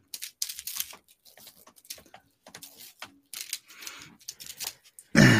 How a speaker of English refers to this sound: I hear you typing. Not typing. You were. Wasn't typing. Listen, I heard.